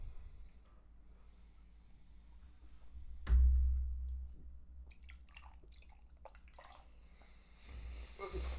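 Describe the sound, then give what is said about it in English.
Liquid sounds as a drink is poured from a can into someone's mouth, filling it as much as possible: a sharp tap or pop, then wet gulping, dripping and splashing, ending in a snorting breath. “I just poured as much in my mouth as I could.”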